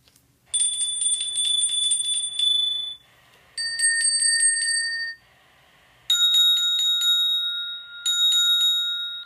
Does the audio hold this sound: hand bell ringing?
yes